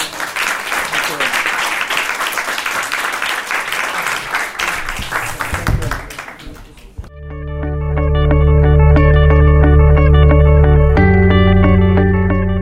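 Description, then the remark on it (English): An audience breaks into steady, dense applause for two guest speakers for several seconds; the clapping fades out and gives way to loud instrumental music with sustained tones. “So to show our appreciation, another round of applause to them.”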